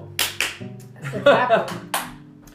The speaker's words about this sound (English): That's a clap.